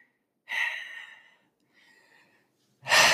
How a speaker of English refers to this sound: No, they can hear my breathing, I promise.